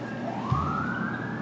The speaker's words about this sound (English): You may have heard the siren in the background.